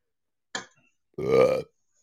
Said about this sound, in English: Hey now. Yeah. No, sorry, I burped.